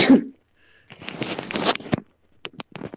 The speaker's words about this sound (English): I'm really glad you managed to get the microphone away. I was like, oh, he's gonna sneeze right at the microphone. That ain't gonna help anybody.